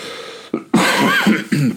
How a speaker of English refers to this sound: And sorry for the cough, folks. There's going to be a lot more of that.